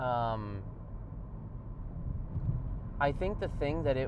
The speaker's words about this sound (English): Oh. Okay. Sorry. Traffic.